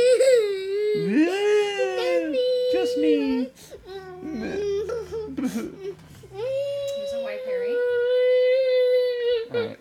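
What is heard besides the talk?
child crying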